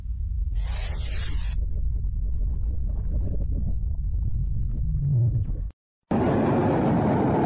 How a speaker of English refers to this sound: Folks, the mother of all ammonium nitrate explosions. Keeping it next to fire. You saw, if you looked at the base of the fire before it exploded, you could see a whole bunch of little sparks going off.